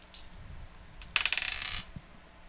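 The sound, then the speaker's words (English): Dice rolled for attack damage in a tabletop game clatter across a hard tabletop in a quick burst of sharp clicks lasting about half a second, then settle, one die cocked against another. No one speaks, and a faint hum sits underneath. “It's resting against another dice.”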